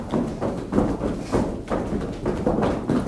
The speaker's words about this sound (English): And feel the reverberation of the movement as you stomp, stomp, stomp, and then whew, let it go. And it's almost like you're kind of putting out a fire. Let's take and now do the same thing with the left leg. Stomp, stomp, stomp, stomp, stomp.